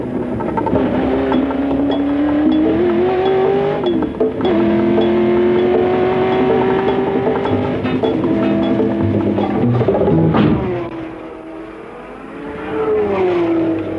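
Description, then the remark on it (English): A race car engine screams up through the gears with rising, wavering pitch, loud, then drops off briefly around a corner before revving back up again, on a track with a chicane that slows cars to about 50 miles an hour before the pits. “on accelerating now, all the way up to a new chicane that slows us right down to 50 miles an hour or so before the pits”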